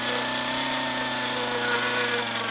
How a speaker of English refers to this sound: achieves impressive detail using a chainsaw, a skill he mostly taught himself 25 years ago. He's been doing it full-time ever since.